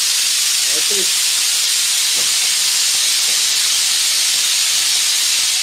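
A loud, steady hiss of a heavy, odorless gas rushing through a hose pushed to the bottom of a glass container, filling it, runs unbroken for the whole stretch, bright and airy, with a few faint low murmurs briefly underneath early on.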